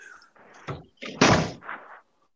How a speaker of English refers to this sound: Open my front door.